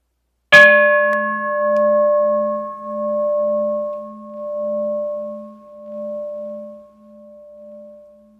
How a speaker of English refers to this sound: When you hear the bell, listen to the sound of the bell, and then open your eyes gently.